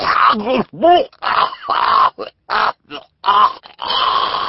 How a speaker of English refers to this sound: Here Mr. Poe interrupted himself to cough once more into his handkerchief, and the Baudelaires waited patiently until he finished.